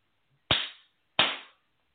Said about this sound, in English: All right, I want to do some clapping clearing. This is for the back of our heads.